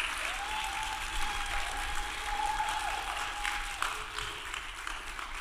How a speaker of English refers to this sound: And today, I want to introduce to you, and I want you to receive them with a wonderful round of applause and praise to God for her,